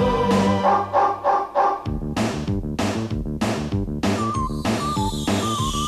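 Loud, upbeat theme music with a steady pounding drum beat and bright synth melody lines, playing continuously without any talking over it.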